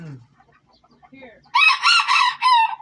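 A rooster lets out a loud, drawn-out crow in several bright, strained bursts, following a second or so of quiet, scattered low clucking and murmurs.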